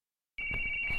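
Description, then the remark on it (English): After a moment of silence, a steady high-pitched electronic tone starts abruptly and holds, with faint pulsing and low rumbling underneath: a radio receiver receiving data from a transmitter, ones and zeros sent across the air. “That noise is coming from the receiver, and the receiver is receiving data from the transmitter.”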